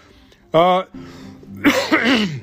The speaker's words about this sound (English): Sorry, I drank some coffee. It went down the wrong pipe, so I'm going to a little bit of coughing here and there.